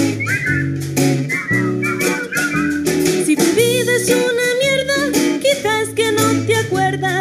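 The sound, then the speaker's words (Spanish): A bright whistled melody bobs along over a bouncy instrumental backing with steady bass and percussion, loud and continuous for the whole stretch, with no one talking. “Si estás triste y deprimido, vente arriba, da un silbido, pues silbando todo el mundo es más feliz.”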